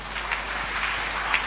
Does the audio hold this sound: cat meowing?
no